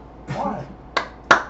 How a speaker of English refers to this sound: Why are you clapping for yourself? Because I like what I say. So I clap for myself.